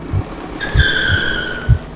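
A car skids with a sustained high tire squeal over a rumbling engine, punctuated by several heavy low thumps as it lurches off the road. Fairly loud, with no talking.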